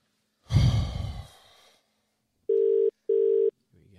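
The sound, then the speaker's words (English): A long, breathy sigh, then a phone call ringing out: two steady, mid-pitched ringback tones in quick succession, each lasting under half a second, separated by a brief gap. “All right, well, I better call Steely, hey? Yeah, give Steely a bit of a bell.”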